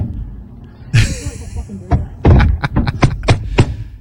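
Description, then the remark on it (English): In Australia, a man strikes the window of a pulled-over car with a boomerang over and over, loud: a heavy thump, a pause, then a rapid flurry of sharp, hard knocks against the glass. “He hit the window with a boomerang.”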